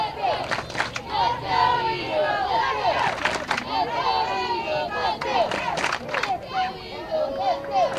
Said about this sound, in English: The Eagleville cheering section all around us. They're taking up probably a good two-thirds.